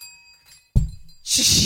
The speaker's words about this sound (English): Whoa. Oh, no. That was a perfectly well-balanced bell on there. There is no reason that should have fallen. It literally came towards me and fell off the table.